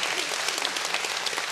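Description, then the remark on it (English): A church audience applauds Jesus Christ with steady, dense applause, many hands clapping at once in a continuous, bright wash of sound with no voices standing out. “Can we clap to our God today, right?”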